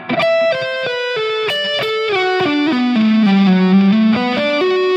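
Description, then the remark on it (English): A distorted lead guitar plays a quick descending lick, moving from the 12th to 9th to 7th fret with downpicking and a hammer-on from the 7th to the 11th fret, bright notes stepping steadily lower in pitch and settling on a sustained low note, loud and alone without any talking. “Wild Descending Lead Guitar Lick”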